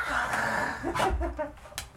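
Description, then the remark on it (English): A dog barks excitedly, letting out a few quick, sharp yips and barks in uneven bursts over a busy, rustling background. “Dogs and cords, not good to get out of the cell, girl.”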